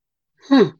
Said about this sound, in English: I swear, I can't stop yawning.